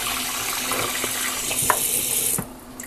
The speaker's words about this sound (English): So we're going to get my 2-cup measuring cup here, and we're going to turn on the sink. And I like to use filtered water because it does taste better.